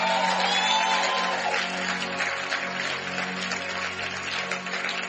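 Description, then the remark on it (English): An audience claps for the Lord after a prayer in a dense, sustained burst for about five seconds, a steady wash of many hands with faint cheers and voices mixed in, holding a fairly even loudness throughout. “Now give the Lord a big, big. Is that how you clap when you have been blessed?”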